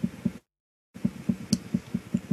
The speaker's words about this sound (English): We got, like, tribal drumming going on in the background. Should be sweet.